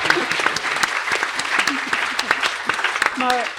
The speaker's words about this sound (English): I think that needs a round of applause for the feat of memory.